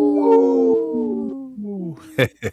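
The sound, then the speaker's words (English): A person imitates a wolf's howl on Native Roots Radio, for a segment supported by Howling for Wolves, with a long, sustained, wavering tone that slowly falls in pitch, ending with two short breathy bursts. “This portion of the show is supported by Howling for Wolves, protecting wolves for future generations.”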